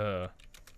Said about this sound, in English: You can hear my typing. My keyboard is really loud. I love this keyboard. It is a Rocat that Vulcan is what it's called. It is really nice keyboard.